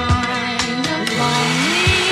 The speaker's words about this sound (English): It's a nice little blender.